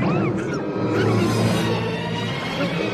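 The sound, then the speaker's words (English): A small R2 robot unit topples into a murky jungle swamp with a loud, churning splash that keeps frothing for several seconds, mixed with swishing noise and a steady tonal layer underneath. “A little R2 unit topples into the water.”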